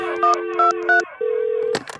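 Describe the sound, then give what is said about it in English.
A steady phone dial tone with three quick keypad beeps pressed over it, then a single held tone followed by a couple of sharp clicks, all clear with no voices. “Get Blumhouse on the phone right now.”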